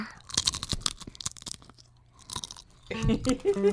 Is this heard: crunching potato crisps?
yes